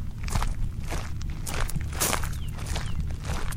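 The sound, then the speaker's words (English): Steady footsteps walk through a cemetery past grave sites at an even pace, each step a soft scuffing thud with a slight crunch, over a constant low rumble and no voices. “As we're continuing to walk through the cemetery, there are so many stories to be told for each one of these grave sites, I imagine.”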